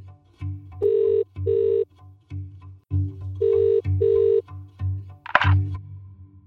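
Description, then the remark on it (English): Ringback tone from an outgoing phone call: two sets of paired electronic trills over a steady low hum, with a brief click near the end. Clear, with no talking. “I did get through to Barry, and we ended up having a long phone call”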